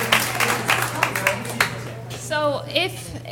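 A brief burst of scattered audience applause, a loose handful of sharp claps over about a second and a half, followed by a short vocal cheer with a steady low hum underneath.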